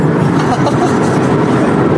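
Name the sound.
car driving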